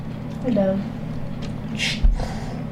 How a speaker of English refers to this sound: You can hear the dog panting, right?